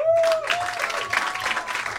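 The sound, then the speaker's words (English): The audience of the comedy show Stand Up on the Spot breaks into a steady round of applause when asked who has never seen the show before, dense clapping holding at an even, fairly loud level for about two seconds, with a thin whistling tone gliding through the start. “And by round of applause, who has never seen this show before?”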